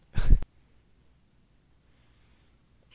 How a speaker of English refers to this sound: Dog's barking.